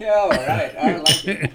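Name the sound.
glasses clinking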